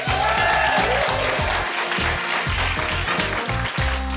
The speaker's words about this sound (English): And they clapped. Yes. So I suppose you're pleased with that. That's better than a boo.